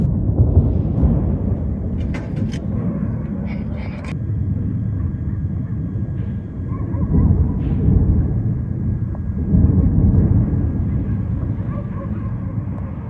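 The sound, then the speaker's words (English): Deep, rumbling booms of explosions from United States and British airstrikes on Sana'a, Yemen, roll continuously, swelling in waves, with a few sharper crackling bursts near the start and no voices present. “Yemen's capital, Sana'a, has again been lit up by explosions and the sounds of more airstrikes by United States and British forces.”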